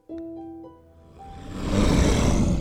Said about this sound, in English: Did you guys hear that? You hear a growl that sort of seems to be all around you and nowhere at the same time.